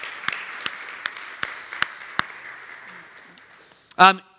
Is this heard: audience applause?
yes